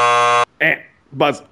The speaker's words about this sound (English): Buzzer.